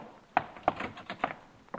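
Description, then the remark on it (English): Three sharp knocks on a door at uneven intervals, each a brief dull rap, with a fainter fourth knock at the very end and no voices. “How'd you ever get up nerve enough to knock on the door?”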